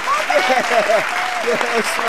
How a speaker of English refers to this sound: Yeah, y'all clap. Y'all can clap. That's good.